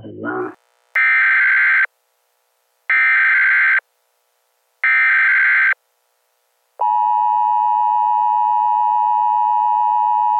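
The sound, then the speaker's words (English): An emergency alert broadcast tone: three loud, buzzy electronic bursts in an even rhythm, followed by a long, steady high-pitched tone that holds to the end. A brief low sound comes just before. “This is an alert from the emergency podcast system.”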